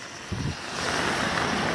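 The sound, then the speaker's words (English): A steady, full rush of rainwater running like a little river down the side of a road, fairly loud, with a continuous hiss and no voices. “That's the water running down the side of the road.”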